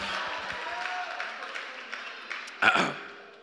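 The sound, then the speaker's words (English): An audience claps and cheers in a steady, dense wash of noise, with a brief louder shout of cheering swelling up near the end before it begins to die down. “Can we make some noise?”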